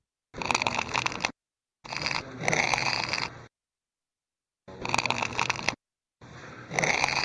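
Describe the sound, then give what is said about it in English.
Four bursts of dry, rapid crackling from a bar of tin being bent back and forth, each lasting one to one and a half seconds with short silences between, fairly loud and gritty throughout. “There you go. There's that crackling. That is not a cry.”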